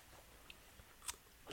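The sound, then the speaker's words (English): A crisp bite into a homemade pickle left in brine about five days: a few small crackles lead up to one sharp, juicy crunch, quiet, with no one talking. “That's like a Vlasic crunch.”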